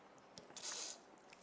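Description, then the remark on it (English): A quick sip of water: a soft slurping burst lasting under a second, with faint wet mouth noises around it and no talking. “I'll just take a sip of water.”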